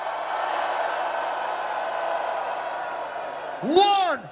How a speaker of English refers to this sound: Raise your hands, raise your flags, and scream. 1, 2, 3, scream!